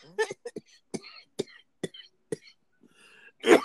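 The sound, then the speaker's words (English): A person coughs repeatedly in a fit of six or seven short, harsh bursts, evenly spaced, ending with a louder, rougher cough after a brief pause. “He's going to make me cough up a lung.”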